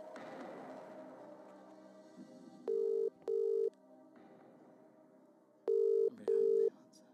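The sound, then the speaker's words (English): A phone call to a friend rings out unanswered: two loud double-ring bursts of a ringback tone, separated by a pause, over a faint background hum. “Oh, you're not answering, are you?”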